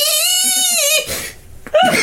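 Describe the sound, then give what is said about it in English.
A person imitates a shrill, howling gerbil-like cry, one long high wavering wail followed by a brief break and another sharp squealing yelp; loud, with no ordinary speech. “I want to see Leo running with a pike staff at Charles Freer, just shouting and howling as much as he could, probably making noise very much like a gerbil.”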